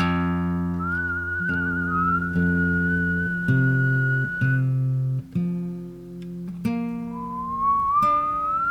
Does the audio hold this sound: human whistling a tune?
yes